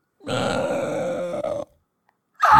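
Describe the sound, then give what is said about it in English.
A loud, rasping raptor dinosaur scream with a harsh, throaty growl that holds for over a second, then a brief silence before a second shrill cry bursts in at the end. “That wasn't a lizard in the middle of a city screaming either. Ew. What dinosaur was that? That's pretty good. Wasn't that like a raptor?”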